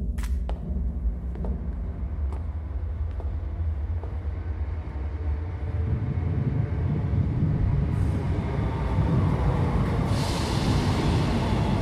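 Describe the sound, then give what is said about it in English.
A subway train rumbles into a station, its low roar swelling steadily louder with a few sharp metallic clicks early on and a hissing brake squeal near the end. “So, what's the plan? We get on the subway, and then...”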